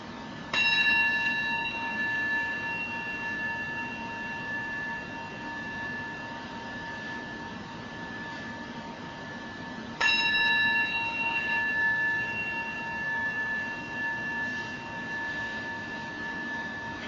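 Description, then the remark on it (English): A meditation bell is struck twice, about ten seconds apart, each strike ringing out clearly and fading slowly in a long, shimmering tone. There is no talking. “I'll ring the bell three times.”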